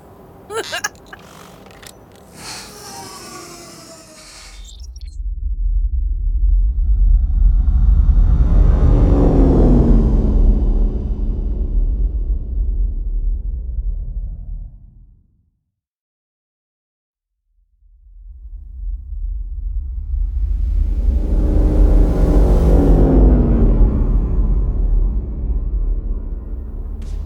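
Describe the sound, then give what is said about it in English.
Synth music by an artist, a B-side, plays from a ship's onboard stereo: two long, loud swelling passages of deep droning bass and gliding tones, split by a brief silence, after a short noisy burst at the start. “Alrighty, so it's the sweet synth sounds of … start playing on the onboard stereo.”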